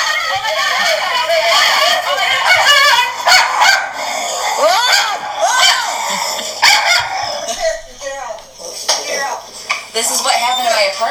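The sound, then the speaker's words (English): Loud, overlapping yips, growls and barks like a dogfight, continuous and frantic, voiced by the speaker's parents imitating dogs, with faint clattering underneath. “That the fighting sound, those were my parents. The dogs were fine.”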